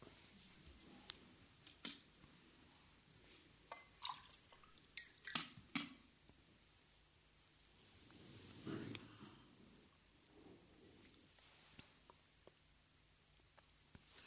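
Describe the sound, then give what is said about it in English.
Quiet handling sounds of someone getting water: scattered clicks, taps and drips, a brief liquid pour or slurp midway, then a few soft sips, with no one speaking. “And the ways, excuse me, I need to get some water.”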